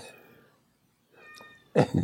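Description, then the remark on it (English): A male cat meows several times in an apartment: a drawn-out tonal cry, a pause, then another wavering call and a louder, sharper meow at the end, with no one talking. “Yeah, he's decided that he likes to get attention by yelling at the other side of the apartment.”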